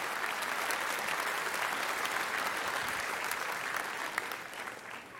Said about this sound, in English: Can we give our worship leaders a hand clap of appreciation this morning?